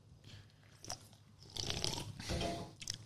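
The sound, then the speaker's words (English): Someone sips a hard seltzer: a brief wet slurp, then longer sipping and swallowing noises, quiet with no talking. “And a sip, right?”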